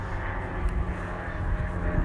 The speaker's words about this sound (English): Yeah, like, so this is a plane going over.